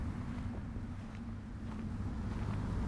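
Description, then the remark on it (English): Steady outdoor wind blowing by Lake Phalen on a chilly day, a continuous low rumbling whoosh with faint airy hiss above it, fairly loud and unbroken, with no voices. “Really windy out.”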